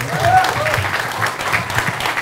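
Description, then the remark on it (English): A steady round of applause from a crowd, dense crackling clapping that holds at an even, fairly loud level for a couple of seconds without pause. “I was wondering, round of applause, is that true?”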